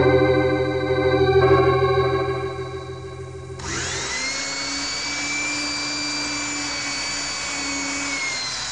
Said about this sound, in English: How much farther? About a foot. I'll just pray this drill doesn't break. Oh, it snapped.